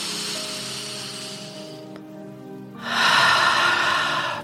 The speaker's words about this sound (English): We're going to take a couple of beautiful deep breaths. So let's start with breathing in and breathing out through the mouth. Just feeling everything go.